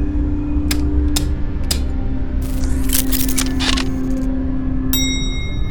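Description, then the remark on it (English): Spaceship avionics system powering up: three sharp switch clicks over a steady electrical hum, a flurry of crackling mechanical bursts, then a bright, sustained electronic tone as the system comes online. “Let's engage the avionics system.”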